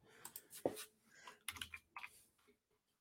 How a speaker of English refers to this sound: Sorry, I'm typing at the same time, making sure that I will be able to put all this back into the, not necessarily the show notes.